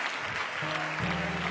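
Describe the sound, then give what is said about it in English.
An audience claps their hands to thank God in a dense, steady wash of applause that stays loud throughout, while a low sustained musical tone comes in partway through underneath the clapping. “Can you clap your hands and thank God for that right now?”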